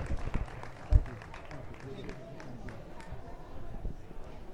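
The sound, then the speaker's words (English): An audience applauds for Chef Robert Irvine, a steady wash of many hands clapping at once, with a louder thump near the start and crowd noise mixed throughout. “Please, everybody, give a warm round of applause for Chef Robert Irvine.”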